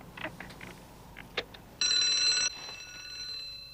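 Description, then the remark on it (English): A few soft clicks and taps, then a cable car alarm bell, pressed after the cable car has stopped, rings loudly in a short, rapid electric burst of under a second, leaving a faint high ringing tone that lingers afterward. “That sounded like the cable car alarm.”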